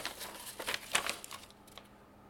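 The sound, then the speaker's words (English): A piece of paper found in a package of necklaces, bracelets and rings crinkles and rustles as it is unfolded, a quick series of crisp crackles over about a second and a half, then fading to quiet with a last light rustle. “There's a piece of paper in here, too.”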